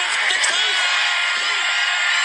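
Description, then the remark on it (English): A large wrestling crowd roars continuously after a wrestler kicks out of Devitt's double stomp, a dense wall of cheering and shouting that stays loud and steady throughout, with scattered whoops and yells rising above the din. “Oh, kicked out of the double stomp. Listen to the crowd.”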